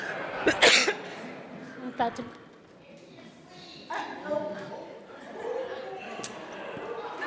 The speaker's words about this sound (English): and I'm about to cough, but it's allergies.